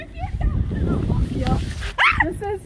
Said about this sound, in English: Mafia. This is Mafia. Oh. Baby, you gotta bark louder.